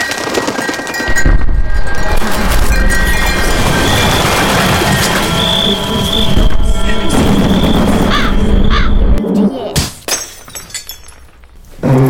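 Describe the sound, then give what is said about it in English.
Crows caw loudly and repeatedly over a dense, busy din, then a bird strikes a window with a sharp thud and dies, followed by a brief quieter stretch and one last burst. “Devil's at the window, Robert! Are you throwing sticks again? A bird?”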